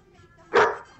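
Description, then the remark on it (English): A single sharp, loud bark from Naya, a female dog, sounds midway through, after a quiet stretch of faint low background noise, then fades quickly. “Oh, she is a beautiful dog.”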